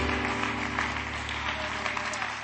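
An audience claps their hands to the Lord in praise, a steady, dense wash of applause that holds at an even level for a couple of seconds, with a low hum underneath.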